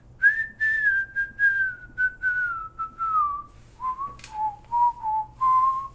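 Someone whistles a slow, steady melody up close, with held notes drifting gently downward in a country-style tune, a brief scrape or click partway through and a low hum underneath.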